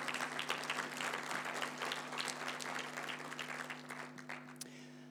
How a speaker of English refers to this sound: Yeah, give him a round of applause.